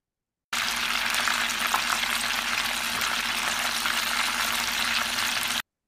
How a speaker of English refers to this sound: Just insert like someone frying chicken.